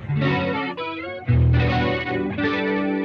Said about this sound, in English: so you can take your chord from something like this, nice, beautiful 7 chord, and then harmonize that polyphonically so you can get down a fourth, up a fifth on the full chord. And now you get something more inspiring. Something neo-soul-y.